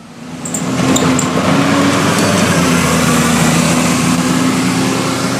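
A bus drives past the bus stops on Midsummer Boulevard, its engine swelling quickly into a loud, steady rumbling drone that holds for several seconds with no voices.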